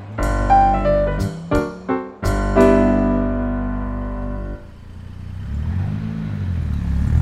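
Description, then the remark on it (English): A car engine revs loudly in several sharp, stuttering bursts, then settles into a rough, rumbling drone with a pitch that swells and dips as it pulls away. No one speaks. “Oh, there she goes. My car again.”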